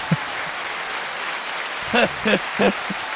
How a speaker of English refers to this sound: Could you send us out with a little pre-recorded sound effect? Oh, my God. This is a round of applause.